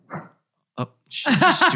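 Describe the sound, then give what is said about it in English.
A dog, Moxie, barks with somebody at the door: two short, separate woofs with a pause between, then a louder, sustained run of rapid, harsh barking to the end. “Stupid dog.”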